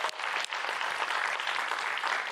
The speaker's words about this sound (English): And so we made their Valentine's a very, very special one. You can applaud that.